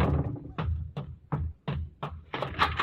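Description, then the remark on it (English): A series of heavy door slams, five or six loud thuds in a quick, uneven rhythm, ending in a denser burst of banging and commotion. No talking. “Slamming doors, women yelling.”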